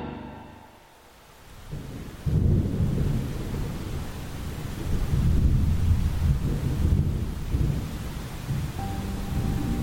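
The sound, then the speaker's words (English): Steady rain pours down after a brief quiet opening, its dense hiss running continuously, with deep rumbling thunder rolling underneath throughout. No one speaks. “So there I was, standing under an awning, in the rain, with old Professor Florsham.”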